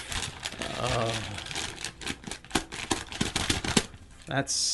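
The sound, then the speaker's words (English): Crisp paper crinkling and rustling, with a run of sharp snaps and crackles as a sheet with a written question is unfolded and handled. A soft murmur of voice sits briefly underneath. “Now is the point when all the paper fetishists who tune in just for this gather around your speakers.”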